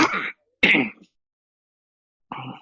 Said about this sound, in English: I'm fine, don't worry. I'm not coughing on you. I'm coughing on myself.